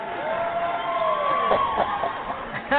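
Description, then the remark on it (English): A crowd cheers loudly and continuously, with whistles and high whoops rising above a dense roar of voices, sustained for a few seconds. “You get some crowd cheering here”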